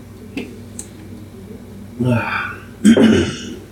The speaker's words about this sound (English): I'm kind of hoarse. I may be coughing a little bit. I have a cold or something.